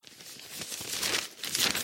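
Crisp rustling and crinkling of the pages of today's newspaper, a steady papery handling sound with brief sharper swishes as sheets are shifted and turned, no voices.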